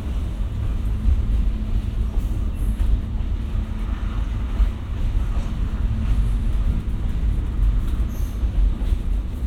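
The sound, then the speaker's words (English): A steady low rumble and rattle of an 80-foot-long electric interurban rail car rolling along tracks, heard from on board, continuous and fairly loud with faint clanks throughout and no talking. “This actually, because it's 80 feet long, is actually a little smoother riding than the car in front of us, and that's our Chicago car 4420.”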